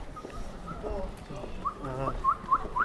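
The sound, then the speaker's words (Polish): A short whistled tune of quick, chirpy rising notes repeats several times near the end, clear, with a voice talking quietly beneath it in the middle. “Ten gwizd przypomina ci coś?”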